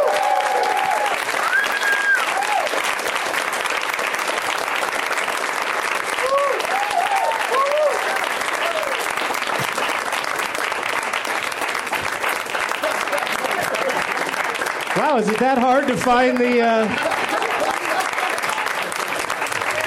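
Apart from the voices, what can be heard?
audience applauding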